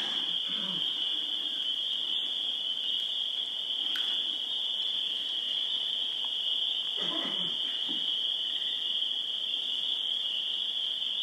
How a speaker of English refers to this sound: Which is not unlike the sounds here at night. The crickets and the frogs. Actually, this is primarily frogs. Different species of.